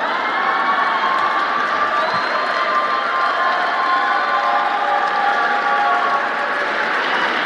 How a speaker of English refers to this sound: Let's clap for that.